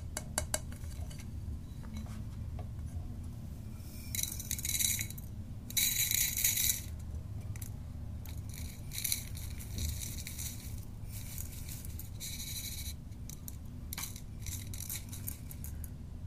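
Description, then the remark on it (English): Loose tea is poured into a metal strainer, making light rattling, clinking patters in a few short bursts over a steady low hum, with no one speaking. “I'm gonna pour it into my tea strainer.”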